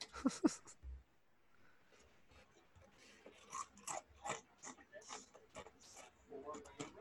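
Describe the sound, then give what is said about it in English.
Loud crunching of Chex Mix snack being chewed, with irregular bursts of crisp bites and mouth sounds over a few seconds and faint muffled voice in the background. “So what you chewing on”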